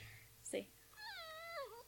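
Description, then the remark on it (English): A female cat lets out a short, sharp sound and then a long, drawn-out meow that wavers and bends downward at the end, fairly loud against a quiet background. “She's mad.”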